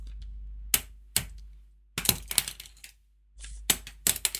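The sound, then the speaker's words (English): A series of sharp clattering knocks of pens dropping onto a hard surface as someone tries to juggle them: two isolated clacks, then a rattling cluster of hits, a short pause, and more scattered taps, fairly loud. “That's two pens. I'll try with three. I couldn't catch two.”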